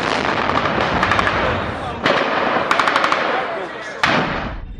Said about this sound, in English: This was no skirmish going on. This piece of video shows armored vehicles and then a soldier firing a rocket-propelled grenade.